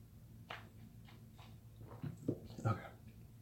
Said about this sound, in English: Okay. Ooh, man, that was a gulp.